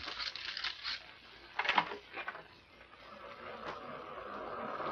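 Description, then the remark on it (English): Ocean surf washes in a steady, rushing roar, swelling and easing as waves break, heard at night through opened glass doors, with a brief sharper clatter near the start and no voices. “The surf sounds ominous.”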